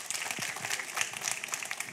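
An audience breaks into steady applause for a couple's 22nd wedding anniversary, a dense crackle of many hands clapping at once, fairly loud and continuous with no voices over it.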